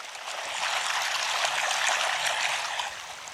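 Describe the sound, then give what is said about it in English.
Steady flowing water from the spring of Battir, a village of green terraces with fruit trees and vegetables west of Bethlehem, south of Jerusalem, babbles and trickles close by, a continuous bright rush with no voices, holding an even level throughout. “And I'm looking at beautiful green terraces full of fruit trees, vegetables, and as you can hear, I'm close to the water.”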